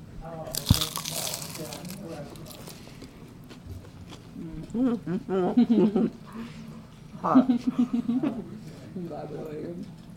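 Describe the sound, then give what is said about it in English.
A sharp crunch of someone biting into crispy deep-fried food near the start, followed by quieter chewing and muffled voices murmuring in the background. “Do you want to crunch into this?”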